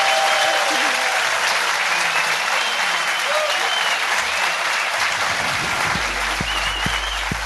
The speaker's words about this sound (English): And ladies and gentlemen, give a massive round of applause.